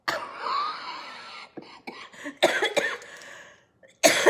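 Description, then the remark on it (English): A drawn-out raspy breath, then a series of harsh coughs in uneven bursts with short pauses between them, ending with one more loud cough. No one speaks. “Pardon me, still battling the cough.”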